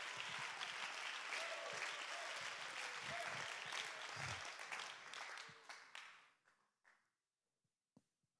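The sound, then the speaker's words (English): A large standing crowd claps their hands to give God praise, a steady, dense wash of clapping for several seconds, then it thins out and dies away, leaving a few last scattered claps. “Come on, clap your hands, give him praise.”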